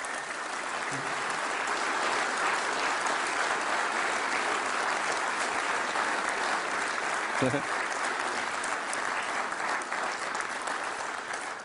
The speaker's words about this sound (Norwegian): Tusen takk for en fantastisk innsats. Skal vi gi en applaus til gjengen?